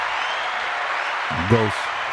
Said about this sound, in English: Did y'all watch the verses? Hand claps. Very entertaining. Hand claps again.